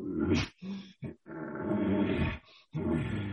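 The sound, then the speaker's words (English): A person imitating a bull elk in a breeding sequence, with a series of deep, growling grunts and pants, a few short bursts followed by a long rasping roar, loud and raspy with no talking. “So when I'm bringing the bull sounds in, I may start raking because this is a breeding sequence, not a cow party.”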